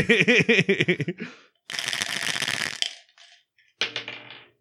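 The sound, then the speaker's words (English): Dice rattle and clatter across a hard surface in a dense burst lasting about a second, followed by a few scattered clicks and a final short tumble, as dice are rolled for a game. A brief melodic vocal-like sound comes first. “I will roll the dice, and we will play Dice to Meet You.”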